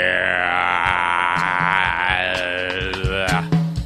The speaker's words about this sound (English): Wow, I'm just doing some throat exercises there. Because we're getting ready to do a nice show here.